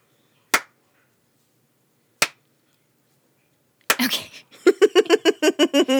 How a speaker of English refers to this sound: There's your slow clap.